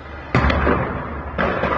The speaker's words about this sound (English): There's also video that night where you can hear gunshots.